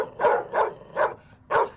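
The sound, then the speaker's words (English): A man, a fan in a Dwyane Wade jersey at a game, barks like a dog while pointing at New Orleans fans, four loud, hoarse woofs in a steady rhythm with short pauses between them and no talking. “I don't know what he's saying, but he's barking.”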